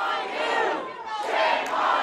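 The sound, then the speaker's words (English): A rowdy crowd at a board meeting booing and chanting, a dense wash of many raised voices surging loudly, dipping briefly, then swelling again with sustained, overlapping shouts. “It got really rowdy. There was booing and chanting and singing.”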